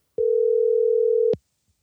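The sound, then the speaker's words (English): A steady telephone dial tone hums for just over a second, clear, with a click at its start and a sharp click cutting it off, before a phone call connects. Nobody speaks. “Well, let's take a phone call from him.”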